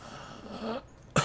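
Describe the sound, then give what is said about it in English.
A voice imitates a man coughing: a breathy, rasping exhale is followed by a pause and then one sharp, loud cough burst. No words are spoken. “And he coughs up a little bit.”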